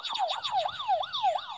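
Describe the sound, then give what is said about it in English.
A father's game show buzzer in a family quiz game blares a rapid, warbling siren-like wail, rising and falling about five times in quick succession, like an ambulance siren, loud with no one talking. “Yes, so the cool ambulance sounding one is Dad's.”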